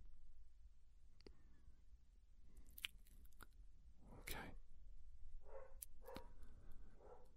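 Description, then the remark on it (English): Buster, a small dog, gives a few short, sharp yaps at irregular intervals, fairly faint, mixed with scattered crunchy, clicking noises against a low background hum. “Yeah, you could hear old Buster barking. He's not afraid of anybody. He's my little dog.”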